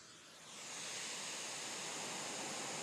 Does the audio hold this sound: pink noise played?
yes